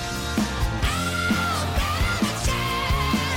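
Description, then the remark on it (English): A rock singer in a played song lets out a long, high, strained scream held for a couple of seconds over a loud full band with steady drum hits; no one talks over it. “Listen to this scream right here.”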